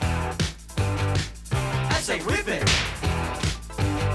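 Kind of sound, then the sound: sound effect, whip crack sound effect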